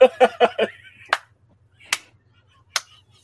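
A quick burst of four sharp hits gives way to one person's slow clap: three slow, evenly spaced single hand claps, each crisp, with silence between them.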